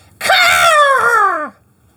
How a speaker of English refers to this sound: I believe it just says eagle screech. it does just say, sorry.